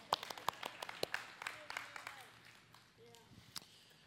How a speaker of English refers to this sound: I think I'll clap for myself.